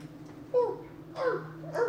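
dog whimpering and barking

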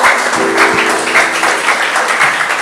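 audience applause

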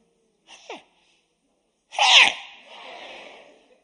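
sneeze

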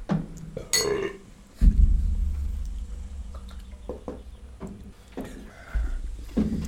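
shot glasses clinking

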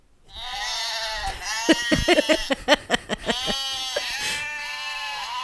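goat bleating

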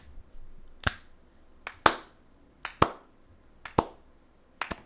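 slow clapping

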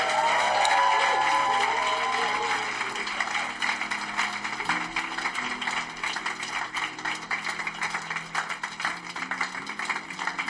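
audience applauding

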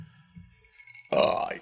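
burp

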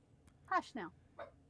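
dog yapping

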